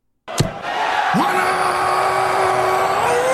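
At the World Darts Championship at Alexandra Palace, London, a darts crowd erupts into a dense, continuous roar of cheering after a maximum 180, while one voice rises into a long, sustained yell that holds steady and lifts again at the end.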